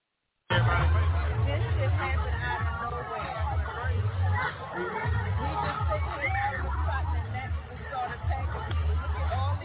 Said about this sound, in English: So anyway, listen to the people freaking out from getting bitten by mosquitoes after the attack. It's pretty telling.